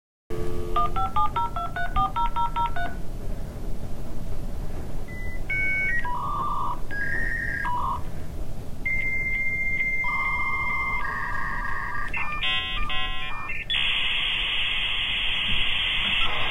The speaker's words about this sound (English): All I could envision is you logging into your email, and it's like back to the day where it's dial-up, and we have to wait for it. Like, that little get off the phone. That screeching noise, or little grinding, screeching.